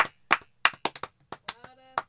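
About ten loud, sharp celebratory hand claps in an uneven, ragged rhythm, echoing slightly in a small room, with a brief voiced tone sounding between the later claps.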